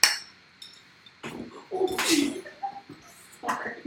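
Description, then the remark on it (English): Glasses clink together in a toast to friends, a bright ringing tap followed by a few more clinks and knocks spread over several seconds, with faint voices in the background. “Cheers to friends, guys. Cheers. Bring it in.”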